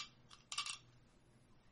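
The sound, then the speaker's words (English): A small hard object clatters briefly on a tabletop, a few quick bright clicks close together as an eight-sided die (D8) tumbles and settles, fairly clear with no talking. “All right, since you lost your last match, I need somebody to roll that is not you to roll a D8.”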